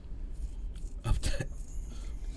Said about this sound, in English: That wasn't a laugh. That was a cough.